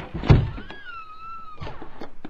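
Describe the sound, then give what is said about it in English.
A stuck door is forced open: a heavy thunk, a sustained high creaking squeal lasting about a second, then another softer knock as it gives way. “The door is stuck. Maybe you'd like to give it a try.”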